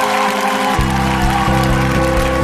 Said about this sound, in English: You hear the clapping right away.